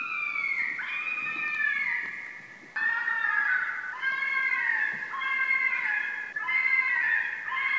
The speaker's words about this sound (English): So here is an example of what a fisher cat sounds like.